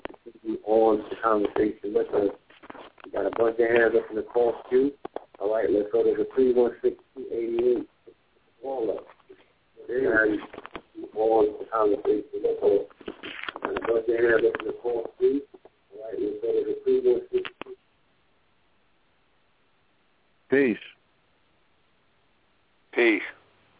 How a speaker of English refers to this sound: Yeah, because whoever was speaking the phone got really, really muffled just now. Okay. Yeah, the line just dropped.